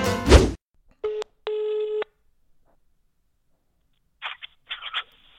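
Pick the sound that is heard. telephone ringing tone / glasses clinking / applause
telephone ringing tone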